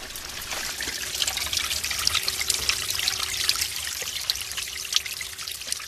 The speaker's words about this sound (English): In the distance, the Tiavata Dam was sparkling, streams were trickling and gushing down the mountain with that beautiful Coca-Cola coloured water.